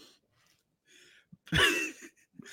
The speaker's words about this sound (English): That was actually just a cough. I wasn't laughing.